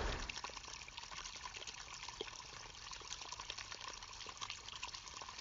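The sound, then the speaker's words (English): Water flows steadily out of a well, a small dark hole coming out from under trees, with a good amount of water flowing through; a continuous trickling and splashing that stays fairly even throughout, with no voices present. “You come down after a second and then you see the well, which is a strange little hole coming out from under the trees. You can't see its source, it's dark in there. There's a good amount of water flowing through.”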